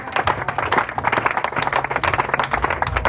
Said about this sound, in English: Thank you for the two people that's clapping.